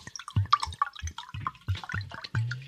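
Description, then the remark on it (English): A beverage is poured, making a quick series of gurgling, splashing bursts of liquid, with no voices present. “I am pouring a beverage.”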